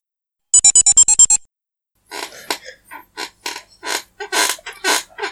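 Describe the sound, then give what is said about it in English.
A quick run of about seven shrill squeaks, then a pause and a string of uneven, scratchy creaks and rubs, fairly loud, from a squeaky chair shifting under someone's weight. “I can hear your chair.”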